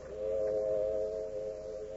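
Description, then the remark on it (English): A southbound freight train whistle sounds in the distance late at night at a railroad cut in the hill country of a New England state: one long, steady blast, a sustained chord of several blended mid-pitched tones holding at even loudness, with no voices. “It is late at night, and the whistle of a southbound freight is heard in the distance.”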